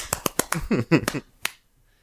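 A quick run of about six sharp, crisp hand claps at an uneven pace, with a brief voiced murmur mixed in partway through, then silence.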